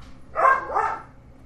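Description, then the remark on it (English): A dog gives two quick barks in close succession, moderately loud, with no talking around them. “Your dog heard the dog food thing.”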